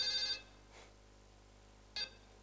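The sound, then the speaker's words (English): A telephone rings for an incoming call with short, bright electronic bursts: one at the start, a faint echo shortly after, then another brief ring about two seconds later over a steady low hum. “Let's take some little phone calls. People are still calling here.”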